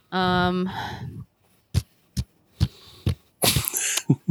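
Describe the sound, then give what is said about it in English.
Someone blows mouth fart noises: a long buzzing, voiced raspberry, then a string of short, sputtering bursts at an uneven rhythm, ending in a louder, messier flurry. No words are spoken. “Fart noises is not a vote.”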